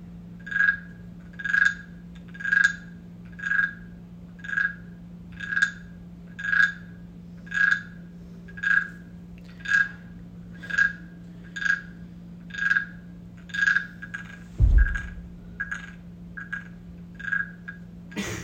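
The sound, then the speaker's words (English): A voice imitates a frog, croaking in a steady rhythm about once per second, roughly eighteen calls in a row, fairly loud over a low constant hum, with one brief thump near the end. “Y'all ever play the frog?”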